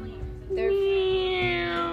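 A single long, drawn-out meow, clear, holding a steady tone for over a second before tapering slightly; it may be a person imitating a cat.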